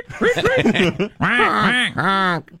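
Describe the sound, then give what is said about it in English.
A person imitates a bird, letting out a rapid string of loud, nasal, quacking squawks in two close bursts, each call sliding up and down in pitch. “I know, Biden, you like the bird noises, so.”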